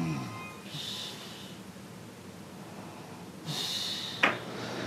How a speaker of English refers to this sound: And my mom snoring.